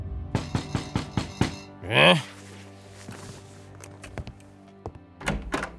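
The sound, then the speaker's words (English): A quick, loud burst of five or six knocks on a house's front door in Spring Green, Wisconsin, then a brief rising vocal cry, followed by a few scattered, urgent knocks near the end. “Mr. Reeder's peaceful lunchtime reverie was cut short by frantic knocking at his front door.”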